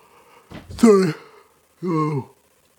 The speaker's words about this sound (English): Got a little after show yawn. It has nothing to do with you guys. So if you're watching on Rumble or you're listening on audio, I apologize for that. Got a weird little yawn right after the show.